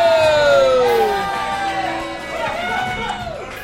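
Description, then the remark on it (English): A live audience at the Unsung Heroes live show at the Creek and the Cave in Long Island City, Queens, cheers loudly, with high whoops and shouts sliding over a dense wash of crowd noise that stays steady for a few seconds before easing slightly. “Welcome to Unsung Heroes, live at the Creek of the Cave in Long Island City, Queens. Make some noise.”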